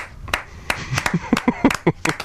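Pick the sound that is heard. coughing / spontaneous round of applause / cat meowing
spontaneous round of applause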